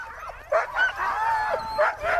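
Several excited huskies being roped onto a sledge to go up a glacier yelp, yip and whine in a dense, overlapping chorus, with sharp high barks bursting out repeatedly over a constant background of whimpering and howling.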